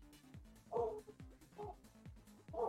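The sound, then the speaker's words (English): A dog barks three times at a steady pace in the background, sounding muffled, with faint low background noise between the barks. “That dog was speaking Dwarven.”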